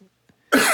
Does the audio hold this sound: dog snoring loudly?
no